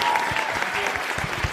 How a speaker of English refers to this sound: Let's give a massive round of applause